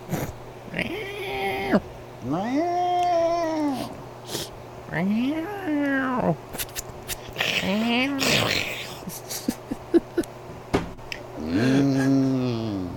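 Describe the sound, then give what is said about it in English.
A cat meows about five times in drawn-out, rising-and-falling calls, fairly loud, with short pauses and small clicks and rustles between them. “Make sure there's no cat around my chair when I scoot back here.”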